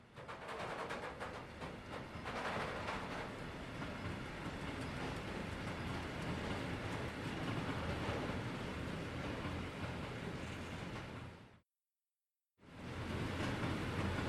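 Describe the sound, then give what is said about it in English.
A passenger train rumbles steadily along its rails as it is about to get dark, with a dense, continuous low roar and rattling wheels; the noise cuts out abruptly for about a second before resuming. “You get on the train as it's about to get dark.”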